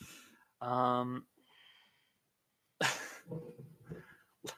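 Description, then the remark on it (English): A drawn-out yawn with a low voiced groan, then a breathy exhale, followed by a second noisy, sighing yawn-like vocalization trailing off at the end. “look, Boba Fett, don't you fucking mock me yawning, all right?”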